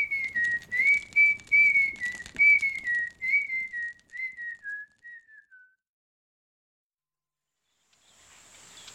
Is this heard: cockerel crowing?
no